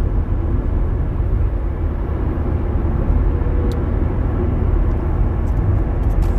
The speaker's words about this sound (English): Here's this big bus. Next to me it says Commuter Express.